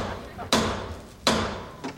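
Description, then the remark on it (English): A hammer pounds a nail outside in slow, uneven strokes: two loud, sharp whacks about three-quarters of a second apart, then a softer third tap, each ringing briefly before fading. “Kelly, what is Dad hammering out there?”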